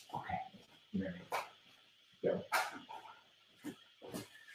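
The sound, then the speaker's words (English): A dog barks and yips in a series of short, sharp bursts spaced unevenly over a few seconds, with faint whining sounds in between. “So I'm going to throw my dog a treat because he's driving me nuts.”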